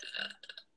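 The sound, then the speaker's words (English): A single sneeze, a short voiced burst followed by two or three softer breathy puffs that fade out, heard fairly quietly on its own. “Bless you.”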